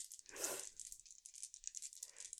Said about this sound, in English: I was gonna roll like a lot sooner, that's why you heard dice.